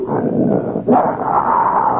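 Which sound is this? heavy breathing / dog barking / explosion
dog barking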